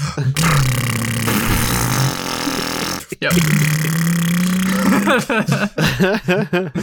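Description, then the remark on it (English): A voice imitates a revving motorcycle engine, with two long, loud, buzzing low drones separated by a brief break, then sputtering, rising vocal bursts. “How does this motorcycle go again”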